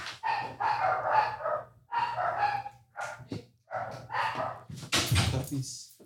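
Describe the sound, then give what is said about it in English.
Puppies bark and yip in a run of bursts, some drawn-out and whiny, others short and sharp, ending in a louder, scratchy flurry over a low steady hum. “Puppies. These puppies.”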